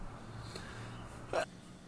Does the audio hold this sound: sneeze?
yes